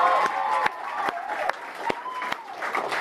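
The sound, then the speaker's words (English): A crowd applauds for audience members who have escaped conservative religion: steady, dense clapping spread across a broad band, with sharp individual claps standing out and some cheering voices mixed in. “Can I get a big round of applause for anyone who's ever escaped any kind of conservative religion and is here tonight?”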